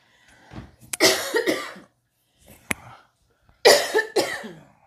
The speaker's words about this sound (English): You gonna cough?